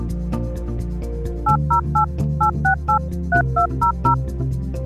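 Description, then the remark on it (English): A rapid series of about a dozen telephone touch tones, each a short, bright two-pitch beep, dialed in quick even bursts over a steady background hum. “Those touch tones remind me to tell you again that if you have a question for one of our veterinarians, you can call our listener line”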